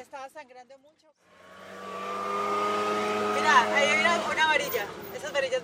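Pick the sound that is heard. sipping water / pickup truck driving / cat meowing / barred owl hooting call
pickup truck driving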